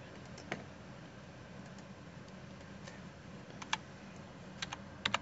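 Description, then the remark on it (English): Keys on a computer keyboard clack in scattered bursts, a few sharper taps standing out over a quiet, steady hiss. The typing is soft, with irregular pauses between strokes. “No, we're watching to see what you're typing in there.”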